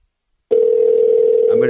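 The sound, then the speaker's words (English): After a brief silence, a loud, steady electronic ring tone sounds through a phone line, a single sustained buzzing hum of an outgoing call to the ICY company ringing on the other end. “This is just a bonus phone call.”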